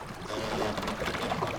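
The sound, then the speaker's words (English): A canoe drifts on river water, with a steady wash of gentle lapping and trickling, continuous and moderately loud, no voices. “It's staying afloat! Yes! Okay, let's head to the source of the river.”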